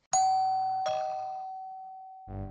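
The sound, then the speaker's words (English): A two-tone doorbell chime at the door of Merlin's house rings out clearly, two bright strikes with a long ringing decay, followed by a brief low thump at the end. No voices are heard. “I walked up to the door and rang the doorbell.”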